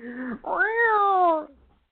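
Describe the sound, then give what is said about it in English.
A cat meows, a short clipped note followed right away by a longer, drawn-out meow that slowly falls in pitch before trailing off. No one speaks. “I'm missing a large brown and white cat.”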